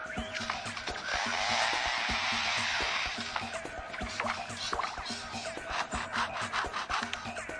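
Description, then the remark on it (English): A superb lyrebird imitates a chainsaw felling trees: a steady, raspy mechanical buzz swells for a couple of seconds, then breaks into choppy, revving bursts and sputters. Fairly loud, with no talking. “And even a chainsaw felling trees.”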